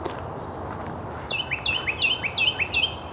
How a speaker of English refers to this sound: Carolina wren. Very close up. This one's only a few feet in front of me.